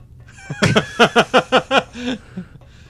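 A goat bleats loudly: one wavering, nasal cry that stutters in about six quick pulses before trailing off into a lower, softer tail. No one is talking.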